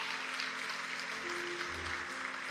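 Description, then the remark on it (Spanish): A large church audience at Numa applauds loudly and steadily for Christ, a dense wash of clapping that holds at full strength throughout, with a faint low hum underneath. “Iglesia, dale un aplauso fuerte a Cristo.”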